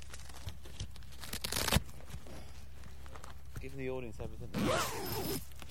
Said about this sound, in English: Right, let's get this to bed. Opening my zipper.